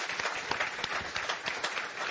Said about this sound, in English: I just want you to know that this audience clapped at least twice for you, and they don't ever clap for Pastor Bart or myself.